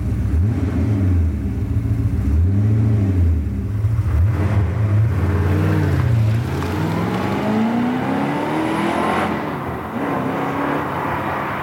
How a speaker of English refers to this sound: Sounds like a V8, but I'm not sure. Yeah, V8 is good, and the 9 is also in it, so it's a 928.